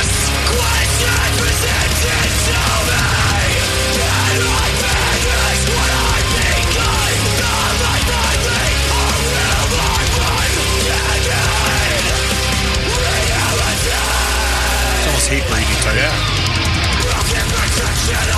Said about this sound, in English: Shout metal, that's all this is. I like the music a lot.